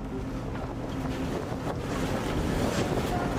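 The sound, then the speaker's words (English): Steady rush of open-sea wind and waves slapping against the hull of a rescue ship in the central Mediterranean, a dense, continuous wash with gusty buffeting on the microphone and no voices. “we're in the central Mediterranean on board the Ocean Viking”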